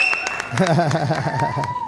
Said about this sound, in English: Round of applause. Got to get my sound effects right. Round of applause.